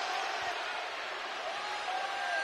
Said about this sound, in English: Draymond Green asks the crowd for cheers. They respond.